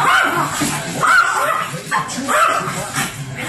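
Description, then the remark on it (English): A female dog barks insistently at dogs on the TV in repeated sharp, agitated, loud bursts, with a few yips and whimpering tones mixed in over a few seconds. “That is barking at the other dogs on the TV.”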